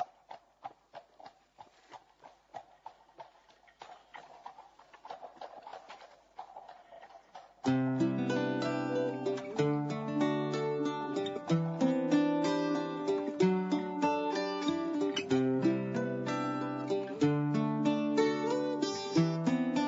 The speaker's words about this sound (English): I should warn you that the song starts with the sound of a horse's hooves.